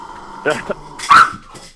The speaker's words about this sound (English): I said, oh my God, is that going to be those are my dogs having a fit. I'm sorry, everybody. It's just everybody in my audience knows that I have my dogs with me.